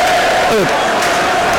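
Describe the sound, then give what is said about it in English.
A football stadium crowd roars in a dense, steady wash of noise. Partway through, a brief falling collective groan of disbelief rises out of it as the fourth official holds up six minutes of added time, before the din carries on. “The fourth official is about to evoke that familiar sound of a crowd going, what?”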